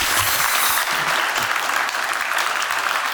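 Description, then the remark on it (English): A room full of people claps steadily, a dense, sustained wash of applause that stays loud and even throughout, with no voices standing out. “Why don't we give him a round of applause?”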